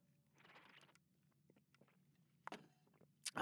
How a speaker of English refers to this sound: First, we're going to take a sip of this fine, high-quality H2O.